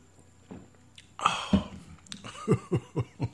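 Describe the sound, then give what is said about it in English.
Someone drinks Red Bull Simply Cola: a breathy slurp, then a quick run of four or five rhythmic gulping swallows, fairly soft and with no talking over them. “Because if not, all you're going to do is listen to me for the rest of the hour as I gulp down the rest of my Red Bull Simply Cola.”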